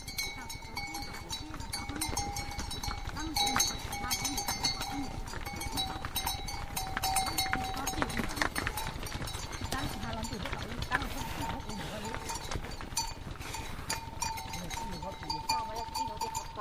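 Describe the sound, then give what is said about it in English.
Animal bells clank and ring unevenly and continuously as a herd of bell-wearing buffalo is herded past in the hills outside Sa Pa, with hooves shuffling and occasional voices calling beneath the steady jangle. “Bell-wearing buffalo are herded past in the hills outside of Sa Pa.”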